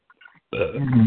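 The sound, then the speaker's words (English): A loud burp erupts after a brief faint rustle, a single long guttural belch after drinking soda pop that rumbles for about half a second. “That was very rude of me. Oh, okay. That's what happens when you drink soda pop.”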